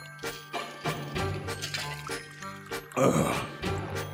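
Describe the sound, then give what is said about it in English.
Someone drinks water during a water break, with a series of short wet gulps and sloshing liquid, a few light bottle tinkles, and one louder splashy burst near the end. “Well, I'm taking a water break right now.”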